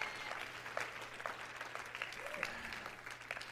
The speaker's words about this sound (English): Somebody clap your hand and shout yes.